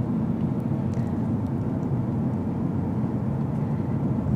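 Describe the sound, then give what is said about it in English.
Steady low rumble of road noise from inside a car driving around on a quiet Sunday night with few other cars, a constant engine and tire drone filling the cabin with no talking. “But it's my pleasure to give you a ride today.”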